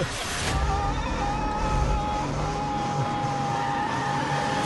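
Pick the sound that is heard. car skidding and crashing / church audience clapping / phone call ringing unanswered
car skidding and crashing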